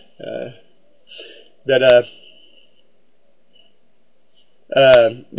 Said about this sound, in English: Oh, okay, your cough.